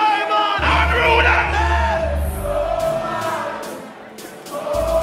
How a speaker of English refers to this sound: Just wheeling off Popcorn's greatest hits right now. The crowd is going nuts.